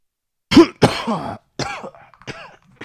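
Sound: cough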